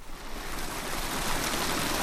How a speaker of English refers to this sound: In Tulare County, halfway between Fresno and Bakersfield in California's Central Valley, a creek runs through this once dry field of patchy grass.